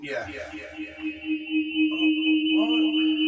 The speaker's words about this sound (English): Yeah. Echo. Wait a minute. Why is that? That's off. That's better.